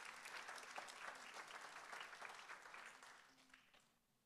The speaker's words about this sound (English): Come on, we can give that applause to the Lord.